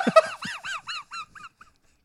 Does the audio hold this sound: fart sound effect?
no